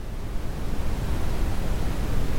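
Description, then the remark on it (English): A steady, unbroken hiss of white noise plays on its own at a constant, fairly loud level, with a soft rushing quality and no voices. “Are you trying to create some kind of sound effect for the podcast”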